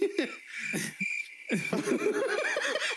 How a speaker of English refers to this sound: Oh, God, you hit me with the crickets?